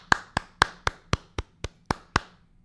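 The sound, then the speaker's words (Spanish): A single person claps hands about nine times in a steady, fairly quick rhythm, crisp, mimicking applause with no talking over it. “Aplaudían y aplaudían y aplaudían.”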